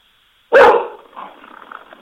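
A dog lets out one sharp, loud bark, followed by a softer, trailing rumble that fades over the next second and a half.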